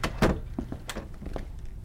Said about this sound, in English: Shut the door behind you and head out to your right.